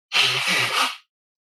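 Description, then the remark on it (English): A person with a cold blows their nose once, forcefully, for about a second: a harsh, breathy rush of air with a faint low honk, loud and steady before stopping abruptly. No one speaks. “I'm gonna leave that up there as I blow my nose.”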